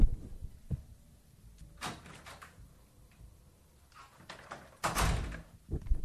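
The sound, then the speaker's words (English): A door is opened and then shut as a delivered dinner is collected from the doorstep, with a few soft knocks and rattles before a louder, fuller thud of it closing, in otherwise quiet surroundings. “It's been dropped at the door.”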